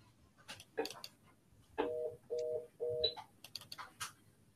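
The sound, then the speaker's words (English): A phone rings in the background in three short, evenly spaced electronic bursts, fairly clear, with scattered clicks and tapping noises before and after. “I just hear a phone in the background.”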